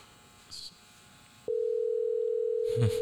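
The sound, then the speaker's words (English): A steady, unbroken ringing tone of an outgoing phone call begins halfway through and hums on at an even level to the end, with a brief, faint voice-like murmur over it near the close. “A little ringing. You hear it?”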